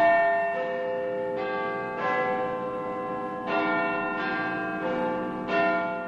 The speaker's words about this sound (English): The chimes of Big Ben are an iconic sound of London, a sound embedded in the history of the British capital. Big Ben itself was made in a bell foundry that's more than four centuries old.